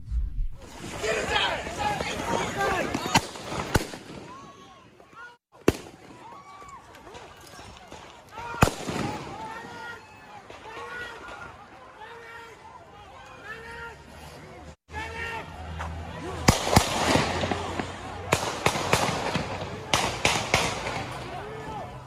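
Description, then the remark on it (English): Real gunshots crack across a noisy street in Kenosha, Wisconsin, a few isolated bangs followed by a faster burst near the end, over a restless crowd with shouting voices and general commotion. “Those are real gunshots.”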